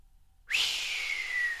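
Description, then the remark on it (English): A long, breathy whistle as a tanner draws his breath inward through pursed lips starts abruptly and holds steady, its airy pitch sliding slightly lower as it goes on, with no talking. “the tanner pursed his lips together, drawing his breath between them in a long, inward whistle.”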